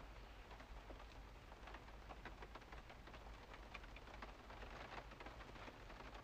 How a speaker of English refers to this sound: It's raining harder, bro.